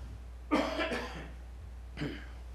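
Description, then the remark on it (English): A dry throat cough, not from sickness: two quick harsh bursts close together, followed a beat later by a single shorter cough, all fairly loud over a low steady hum. “This is not a sickness cough. It's a dry throat cough.”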